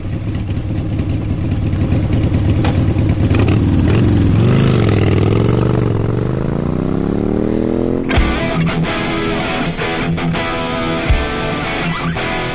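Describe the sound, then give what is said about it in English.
A motorcycle engine rumbles, then revs and climbs in pitch as it accelerates away on a ride along Highway 7 and J in Camden County and Hickory County, the steady drone continuing loud and unbroken with no voices over it. “Coming up in this episode, we're going to take a ride along Highway 7 and J in Camden County and Hickory County.”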